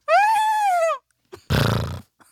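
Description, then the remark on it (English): A person imitates a horse: a loud, sustained whinny-like cry that slides slightly downward in pitch, then a short pause and a rough, fluttering snort, like lips blowing. “One sounded like a horse.”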